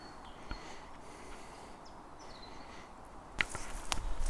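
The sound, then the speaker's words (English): Footsteps of people walking quietly with a dog through mixed woodland, crunching and snapping branches underfoot: a faint crack early on, then sharper, louder snaps and rustling toward the end, with faint birdsong in the background and no talking. “So I'm going to try and walk up to this area pretty quietly with the dog, but you can hear us snapping branches under our feet here”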